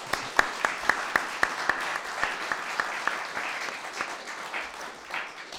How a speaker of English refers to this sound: Thank you very much. And a round of applause for them, please.